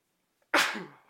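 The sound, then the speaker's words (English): A single loud, sharp sneeze caused by pollen after a day outdoors bursts out after a brief silence, with a quick breathy intake just before it and a fading exhale afterward. “Excuse me.”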